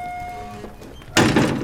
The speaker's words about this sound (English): Using a handle, cunningly constructed so the surface of the plate remained smooth and flush with the surrounding floor, he lifted the trap door.